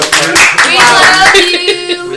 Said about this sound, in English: We want to clap.